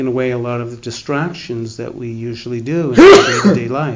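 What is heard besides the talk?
sneeze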